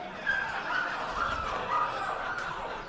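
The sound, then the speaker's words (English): A person's voice mimics a dog barking with a couple of short woofs, set against a steady, busy background murmur. “Woof, woof.”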